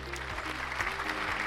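A crowd claps in a steady, dense round of applause, a loud crackling patter that holds evenly throughout with a faint low hum underneath.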